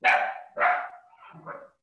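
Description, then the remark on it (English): A puppy gives two sharp barks in quick succession, followed by a softer, trailing yip, with no one talking over it. “Puppy wants to join in.”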